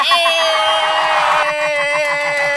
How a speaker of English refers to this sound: Russell Westbrook is back with James Harden. Hold on, we gotta get the cheering on for that.